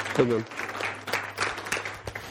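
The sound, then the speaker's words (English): A crowd claps together in a steady wash of applause for the speaker's friend, moderately loud and sustained, with a brief voice heard near the start. “Yeah, give my buddy a hand clap.”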